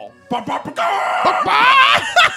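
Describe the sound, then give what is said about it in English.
A person loudly imitates a rooster crowing, starting with a few choppy, strained bursts and then breaking into a long, wavering, high-pitched cry. “Anyway, you sound like a cock in the morning.”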